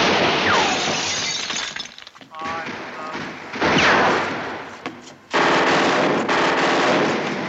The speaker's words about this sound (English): But yeah, there was an armored car. They are not fucking around, because not only are they sure that it's people with warrants, they're pretty sure it's Bonnie and Clyde. They know. Basically, a big shootout takes place.